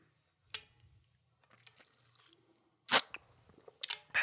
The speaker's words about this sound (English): Let me just take a sip out of my hydro flask.